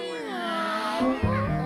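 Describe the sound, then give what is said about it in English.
Tabby cats meowing in a drawn-out, wavering yowl, with a second lower meow joining partway through so the voices overlap; fairly loud, with no talking. “what's up with your tabbies?”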